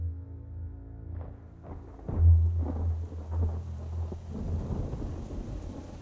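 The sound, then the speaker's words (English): A thunderstorm with deep, rolling thunder rumbling in waves, building to a loud crack-like swell around the middle, over a steady hiss of falling rain with no voices. “That night, in the middle of a raging thunderstorm, vandals blew open Harrison's tomb with dynamite”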